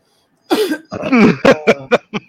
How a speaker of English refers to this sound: by the way, if you're listening to this, sorry for my coughing. I should be muting my mic,